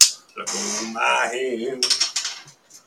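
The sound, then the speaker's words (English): A long-neck bottle of Widmer's Hef beer is handled right against the microphone: a loud glassy clink, then rubbing and scraping with ringing tones, and a few lighter taps fading out. “Let me get real close so the listeners can hear my bottle. Long neck bottle.”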